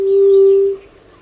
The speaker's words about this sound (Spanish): Ahora una sigilosa paloma ala blanca hace su llamado siniestro desde el suelo del bosque.